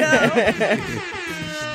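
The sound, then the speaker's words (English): A loud, sustained air horn blast fills nearly two seconds, its brassy tone wavering at first and then holding steady to the end. “I needed like a record scratch and an air horn.”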